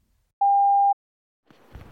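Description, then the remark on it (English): A single steady voicemail beep, a clean mid-pitched electronic tone lasting about half a second, followed by silence and then the faint onset of a voice. “And if you don't want to hear our responses to it, just keep fast forwarding until you hear another voicemail beep.”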